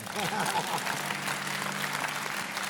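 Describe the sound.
A room full of people applauds steadily for a few seconds, dense and fairly loud, with a few voices calling out faintly beneath the clapping.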